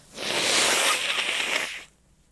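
A single loud nose blow, a steady breathy rush of air lasting under two seconds with a hissy, high-pitched texture, then it cuts off into quiet. No talking.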